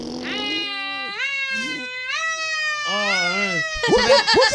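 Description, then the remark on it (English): A person vocally imitates a police siren, with a loud voice sliding up and down in pitch through several wailing cycles, ending in a rapid warbling burst. “We get some sirens or something.”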